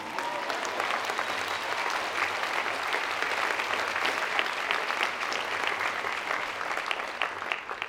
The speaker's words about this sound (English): This is where you clap.